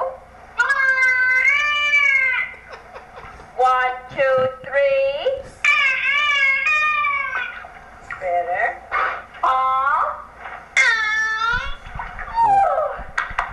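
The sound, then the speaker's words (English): A dolphin named Peter, being taught to mimic human speech and counting, vocalizes in halting, speech-like phrases, a series of loud, wavering, nasal squeals and whines that rise and fall in pitch, separated by short pauses. “By the way, they're claiming that the dolphin gets better. Listen to this.”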